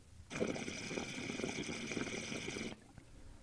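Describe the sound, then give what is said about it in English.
A 10 mil micro reed call blown in one continuous stretch of about two and a half seconds: a thin, high, airy buzz with rapid chirpy flutters pulsing underneath, then it cuts off abruptly. No talking. “This is the 10 mil micro.”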